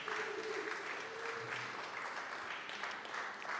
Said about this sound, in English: Yeah, you can applaud him.